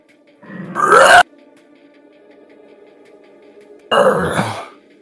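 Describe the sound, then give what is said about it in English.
During a game, a person imitates a roar for the character Gurn's rage, giving two loud, rough, growling vocal bursts separated by a few seconds of quiet. Noise cancellation cuts the first roar off abruptly, and the second fades out. “Can we get a roar?”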